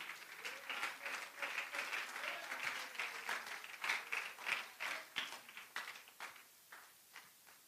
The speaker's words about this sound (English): Somebody stand to your feet right now. Oh, come on. Somebody clap right now if you feel what I feel.